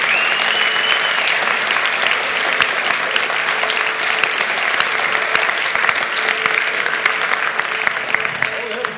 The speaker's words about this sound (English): Okay, they're all clapping for God, but they're clapping for you too. And so welcome.